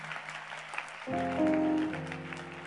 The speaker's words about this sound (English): Are you clapping your hand for the Lord?